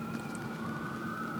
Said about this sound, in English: fucking sirens going off.